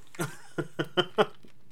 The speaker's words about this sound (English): We're just going to go ahead and chew them up.